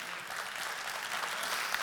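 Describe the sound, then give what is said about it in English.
An audience claps together in a steady, dense wash of applause, the many overlapping hand claps holding an even loudness for a couple of seconds with no voices over them. “And the reason why we clap is because this is a message of hope for the rich and the poor alike.”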